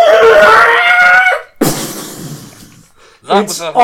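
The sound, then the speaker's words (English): A person imitates the dying scream of a horse hit by psychic damage from a dissonant whispers spell in a tabletop role-playing game. The sound is a loud, strained, shrieking wail, then a ragged rasping breath, ending in a sharp, wavering cry. “Might kill the horse, but fuck it. That's really good. So that's 8, 13. Okay, the horse just lets out.”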